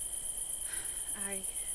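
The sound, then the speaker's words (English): A dense chorus of crickets chirps steadily in rapid high-pitched pulses in a jungle that is growing darker, filling the background, while a brief faint voice-like tone rises and fades partway through. “If it's not the crickets, then what?”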